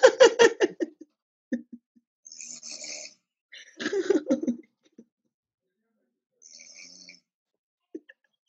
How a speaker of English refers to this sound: And then mine is here, and there's no sleep talking, but it's all snoring. So listen.